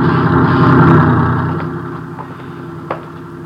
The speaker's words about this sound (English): Watch the truck